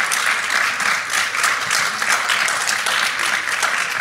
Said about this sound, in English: And I want to thank our panel. Please give them a round of applause for coming to join us here today.